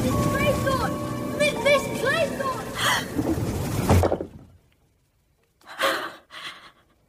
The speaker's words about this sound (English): Sound of the sea. Could listen to it for hours. I hate it.